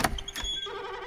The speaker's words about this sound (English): Then, the door opened.